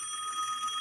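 A telephone rings with a steady, bright, high-pitched electronic tone that holds without a break for under a second. No voices are heard.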